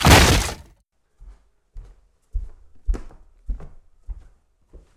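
A door is broken down after a shot was reported: a loud, splintering crash bursts out first, followed by about seven heavy, uneven thuds and knocks with sharp cracking edges, and no voices.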